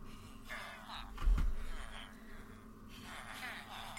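A single deep, rumbling boom of video game thunder swells suddenly and then fades, over a steady low background hum.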